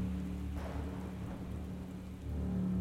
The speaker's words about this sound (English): Not long after, a fierce storm blew through the community